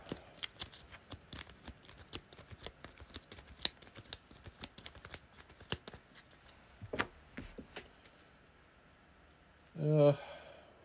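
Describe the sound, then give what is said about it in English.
A deck of cards being shuffled during a card game, a rapid run of crisp little clicks and riffling snaps that quiets toward the end, followed by a brief louder burst of riffle. “I don't have anything there, so let's shuffle that.”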